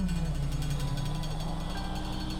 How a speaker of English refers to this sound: Main engine, start. Goodbye, Earth. Solid rocket booster, ignition.